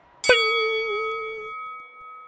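A single bell strike rings out as a crowd hushes, with a sharp metallic attack, then its bright tone sustains and slowly decays over a couple of seconds, loud with no voices.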